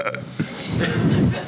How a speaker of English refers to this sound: If you're going to do that, at least do it loudly. Exactly. Ooh. And she burps.